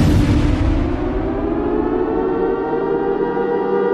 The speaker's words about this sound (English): Well, there you go. You hear the sirens for the final time. Maybe the sirens will just kind of die off here because the Spook Show Summer Disaster has finally come to an end.